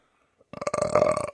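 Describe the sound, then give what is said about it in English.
A single loud, drawn-out burp with a rough, rattling tone lasts under a second, with no talking. “It's really just flatulence and burping.”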